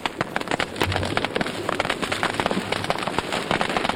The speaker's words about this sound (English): So the scientists snuck up on individual frogs as they rested in the midday sun of the West African savanna and played them recordings of fire. Here's what the frogs heard.